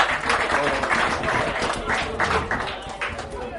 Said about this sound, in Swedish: En applåd tack